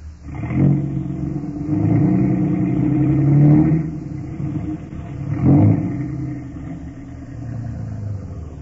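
A car engine revs up and down in a few surges as the car is moved across a road to block it, loud, with a steady low rumble between the bursts of acceleration.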